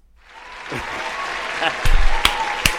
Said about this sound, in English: They knew that they were breaking the law. And they got arrested. And they got arrested. Applaud that.